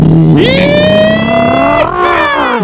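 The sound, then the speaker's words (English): A loud pickup truck engine accelerates, its droning pitch climbing steadily, then briefly dipping and rising again as it revs higher over nearly three seconds. “All right, well, let's go down to the trailer park, hop on into the pickup truck.”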